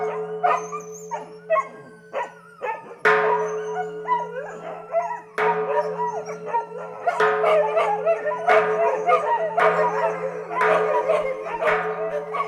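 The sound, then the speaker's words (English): Several dogs that live at a temple howl and yip together as a monk strikes the temple gong up the hill from a village at 6 o'clock in the evening; the gong's long ringing tone hangs underneath while strikes land steadily, coming faster toward the end. No one speaks. “The gong starts, then the dogs who live at the temple start too.”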